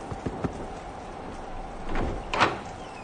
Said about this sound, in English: Knock on the door.